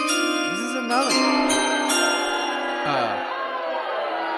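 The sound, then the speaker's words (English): A bright chime sound effect, played to signal that a draft pick is in, rings out loudly, its layered bell-like tones sustaining and shimmering for several seconds with a few sliding notes, and no one speaks over it. “play the chime, Thomas, because the pick is in”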